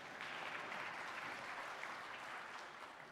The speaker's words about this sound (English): Yes, a round of applause.